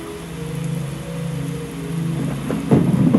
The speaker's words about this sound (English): Let this storm and this rain, let it be a sound of peace for the fact of knowing his voice is still there.